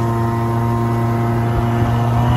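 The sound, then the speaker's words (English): A loud, steady engine of a car closing in on the recordist in traffic drones continuously with a strong tonal hum, fairly constant in level throughout, with no voices. “And this one car's kind of closing on me a little bit.”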